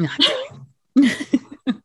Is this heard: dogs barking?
yes